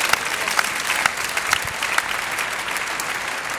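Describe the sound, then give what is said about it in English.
An audience gives a hand clap of praise to God, many hands clapping at once in a dense, sustained wash of sound with a few sharper claps standing out, fairly loud throughout. “Well, come on, somebody give him a hand clap of praise.”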